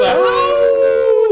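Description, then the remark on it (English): A single loud howl from a human voice imitating a wolf, rising quickly, holding a long steady pitch, then sliding down at the end. “Let me get a howl.”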